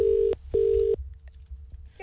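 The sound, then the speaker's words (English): A telephone line tone from an outgoing call to an information centre in Nelson: two steady, clear electronic beeps in quick succession, fairly loud, followed by faint line hiss with no voices. “we called the Nelson Information Centre to see if they were actually proud of having Guy Williams as their main celebrity”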